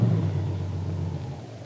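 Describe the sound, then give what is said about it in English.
A car engine rumbles low and steady, easing slightly toward the end as the car pulls off the road near a lake and comes to a stop. No one speaks. “Well, here's as far as we go by car.”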